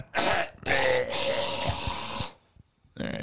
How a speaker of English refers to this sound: All right, get it together. Get all your coughs out. I know how you like to cough.